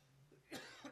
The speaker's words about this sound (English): You know, I never cough till I get on the air with you.